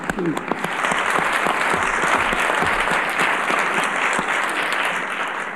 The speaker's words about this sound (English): And I think those over there deserve a clap again.